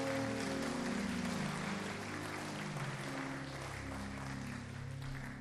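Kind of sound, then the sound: crowd, audience clapping hands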